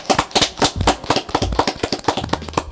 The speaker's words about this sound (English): Can we just round of applause for that, please?